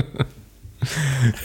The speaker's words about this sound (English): Are you coughing?